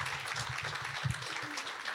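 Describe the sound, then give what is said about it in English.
A church audience applauds a person invited up to share, a steady wash of many hands clapping together at moderate loudness for the whole stretch, with no voices standing out. “Give Trevor a round of applause too, would you?”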